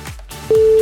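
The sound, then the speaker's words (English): A dial-up modem connection tone, from an internet connection made over a phone line, cuts in abruptly after a brief low rumble, a loud, steady single pitch that holds unbroken to the end of the short clip. “we would connect our internet to the phone line”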